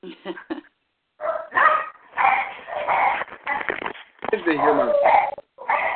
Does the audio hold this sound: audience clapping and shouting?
no